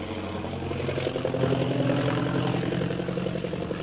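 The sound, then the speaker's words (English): An airplane engine drones steadily for a few seconds as Shanghai Lil's plane circles over the city of Shanghai in thick fog, a loud, continuous humming roar with a buzzing, layered tone and no voices. “Meanwhile, Shanghai Lil's plane carrying Jungle Jim and Kolo zooms over the city of Shanghai, circling around in the impenetrable fog.”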